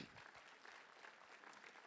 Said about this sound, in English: That we must learn how to not be the crowd that keeps people from Jesus, but the bridge that connects people to Jesus. And so Zacchaeus could not, yeah, y'all could clap for that one.